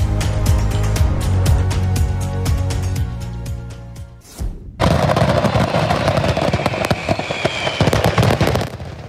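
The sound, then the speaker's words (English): A 4th of July fireworks display on a beach in Ocean City, Maryland, goes off accidentally while being set up. Rapid explosions crackle and boom in a dense, continuous barrage, loud, with a brief lull midway before another intense burst of overlapping bangs and crackling. “A series of explosions sent beachgoers running for cover.”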